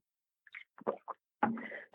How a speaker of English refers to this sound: Excuse me. Teaching people. I got a little cough.